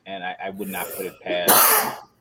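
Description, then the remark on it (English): A man speaks briefly, then a single loud, sharp sneeze bursts out right after his words, a harsh, hissy blast lasting about half a second. “Bless you.”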